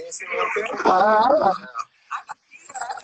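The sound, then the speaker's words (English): Garbled, echoing voice audio from a computer call line, with a loud smeared stretch of speech-like sound followed by a short gap and fainter repeated fragments. “I can hear an echo somewhere.”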